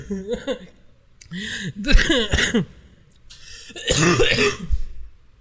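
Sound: coughing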